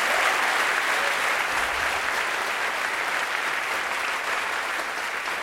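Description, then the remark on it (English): Sustained audience applause, a dense, steady wash of many hands clapping at an even loudness for several seconds, with no voices standing out. “Thanks for that wonderful applause.”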